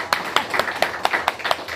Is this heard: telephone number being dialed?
no